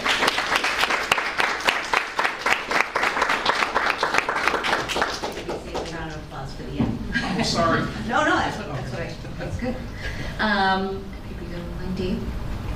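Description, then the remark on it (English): An audience bursts into dense, steady applause with many hands clapping at once to congratulate school staff in new roles for the school year. The clapping then thins out, and a person begins speaking over the last scattered claps. “And yeah, we just would like to welcome all of you, and I just want to start with a clap and say congratulations.”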